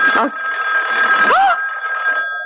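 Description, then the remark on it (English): A telephone bell rings continuously and loudly, its steady metallic trill filling the whole moment while a brief vocal exclamation breaks in over it. “It's the phone.”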